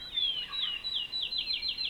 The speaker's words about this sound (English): And that was a field sparrow. I'm at Finger Lakes National Forest, at the edge of a meadow.